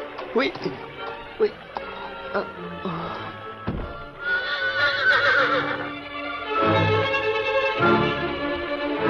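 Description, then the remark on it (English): A horse named Victor whinnies loudly and at length in the second half, its shrill, wavering neighs clear, after a few seconds of scattered knocks and thumps. “Then, dragging the exhausted Dan along with him, the brave horse slowly but surely made his way to shore.”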